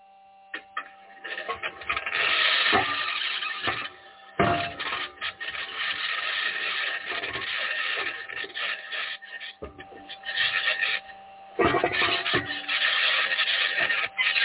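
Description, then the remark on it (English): The Perseverance rover's six aluminum wheels scrape across the surface of Mars, recorded by a microphone on the rover, in a continuous, harsh rasping grind, broken by occasional sharp clanks and knocks from the suspension, with a faint steady hum underneath and no talking. “That scratching is the sound of the wheels in contact with the surface of Mars.”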